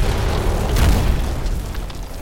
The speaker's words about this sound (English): Suddenly, a series of devastating explosions ring out and pieces of rubble go sailing over them, some hitting the arcane shield.